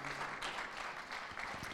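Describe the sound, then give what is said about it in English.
An audience claps together in praise of the Lord in a steady, dense wash of applause that carries on evenly throughout, with no one speaking over it. “Come on, clap for Him. Give Him praise.”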